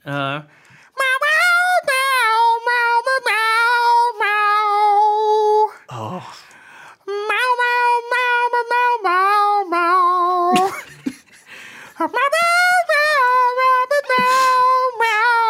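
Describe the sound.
A person sings a tune in long, wavering meows, imitating a cat, with several sustained phrases broken by brief pauses, fairly loud.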